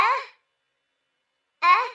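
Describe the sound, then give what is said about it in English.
Two short, breathy, warbling gasps separated by a second and a half of silence, fairly loud. A human voice imitates the gasping call of the Tudlow, an imaginary creature, a call that is both a mating call and a cry for help. “Its characteristic gasping is both a mating call and a cry for help.”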